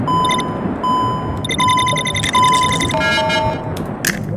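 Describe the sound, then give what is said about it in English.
A game timer running out, with echoey electronic clicks and tones signalling that time is running out. Bright, ringing beeps repeat over a steady hiss, then shift pitch near the end. No one speaks. “You're gonna hear clicks, echoey clicks, that mean my time is running out.”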